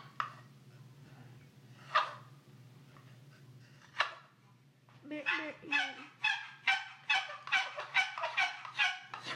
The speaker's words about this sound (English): The bottom surface of the top of the box, the handle piece, needs to rub against this edge. Okay? That's where the noise is coming from. And then it's just echoing inside the box.